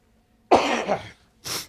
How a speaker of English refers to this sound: I apologize too for being the person coughing on all in the background of all these questions, but I'm going to edit in some extra coughs later.